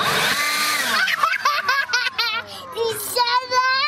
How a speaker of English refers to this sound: She's stuffing her stuffed bunny into a leaf blower. After she gets it in nice and snug, it's time for blast off.